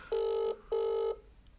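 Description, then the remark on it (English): A phone's ringback tone purrs twice in a quick double-ring pattern, two steady buzzing tones separated by a short gap, heard clearly over a quiet line with no one talking. “It's always ringing about fixing my car.”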